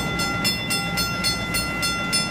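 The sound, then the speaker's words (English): The first MBTA Green Line light rail trolley pulls away from Tufts Station before 5 a.m. on the new stations' opening day, with a steady electric hum, marked by a regular series of about six bright clacks, roughly twice a second. No voices are heard. “The first trolley rolled out of Tufts Station before 5 a.m. this morning as cheering crowds looked on.”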